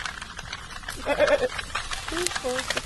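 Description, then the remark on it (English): Two or three wavering goat bleats come in close succession, moderately loud, over a steady outdoor background hiss; goats brought to Howth to manage flammable vegetation and prevent wildfires. “Shilmartin Hill, about 60 acres burned for 6 weeks straight, and the goats are here to prevent that in the future.”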